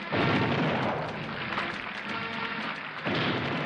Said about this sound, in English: And now he's up there smiling, and they're doing the 21-gun salute, the cannon, boom, boom.